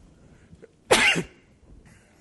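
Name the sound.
sneeze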